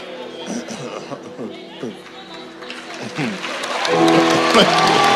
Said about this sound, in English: Now they clap for him.